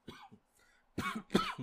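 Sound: imitated coughing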